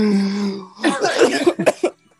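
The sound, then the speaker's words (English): A person coughs and clears their throat: a sustained raspy throat sound, then a burst of rough harsh coughs ending in a few short hacking bursts before silence. “This thing got me coughing.”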